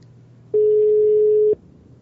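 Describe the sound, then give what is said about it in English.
A single steady telephone ringback tone of an outgoing phone call sounds clearly for about a second and then cuts off, with a faint low hum underneath before and after. “All right, we're ringing.”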